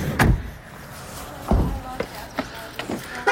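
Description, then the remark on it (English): A car door shuts with a solid thud, and a second thud follows a moment later. Several sharp mechanical clicks come after, like the lock engaging, with faint background noise. “Lock up the old door here.”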